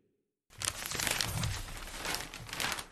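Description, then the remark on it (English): After a moment of silence, a newspaper page is turned to the Brisbane Courier of Queensland, giving a steady papery crinkling and rustling that lasts a couple of seconds, with no voices. “Turning the page to the Brisbane Courier in Queensland now”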